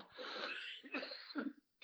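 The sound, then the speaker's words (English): A fit of harsh, raspy coughing after choking on a sip of water: a long rough burst followed by several shorter hacking coughs in quick succession, loud and with no talking. “I had a sip of water and it went down the wrong way.”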